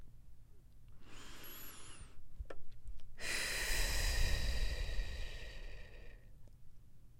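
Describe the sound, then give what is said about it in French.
A deliberate deep breath taken with eyes closed: a short airy inhale followed after a pause by a longer, steady exhale, with no talking. “Parce que des fois on regarde, moi je me vois en train de chercher des solutions et puis dès que je ferme les yeux, je prends une respiration.”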